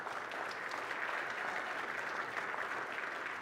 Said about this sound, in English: In-person church, would you welcome our online folks with a round of applause?